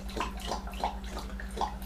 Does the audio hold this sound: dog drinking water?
yes